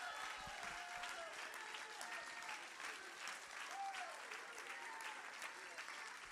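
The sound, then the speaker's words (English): An audience stands and claps hands steadily for several seconds during a praise break, a dense, continuous patter of many people, with raised voices and shouts of hallelujah rising and falling beneath the clapping. “I think I'd just like for you to stand, clap your hands, and shout hallelujah to God.”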